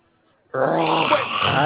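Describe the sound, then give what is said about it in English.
After a moment of near silence, a person lets out a loud, sustained growling howl, imitating a wolf on a full-moon night, rough and throaty for over a second without pause. “Tonight's a full moon. I'm turning into a wolf.”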